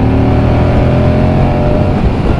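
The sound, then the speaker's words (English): A Moto Guzzi V100 motorcycle engine runs loud while riding, a steady throbbing drone with a rich low rumble that holds even throughout, no voices over it. “Very, very characterful engine.”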